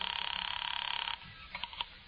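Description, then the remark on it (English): A telephone rings with a rapid, buzzing trill for about a second during a call to police headquarters, then stops and gives way to a few faint clicks and clunks, as if the receiver is being handled. “Expense account, item 4, 5 cents, phone call.”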